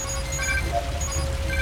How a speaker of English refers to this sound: Hey, little robots, hear that noise? That's water filling up into your suffocation room.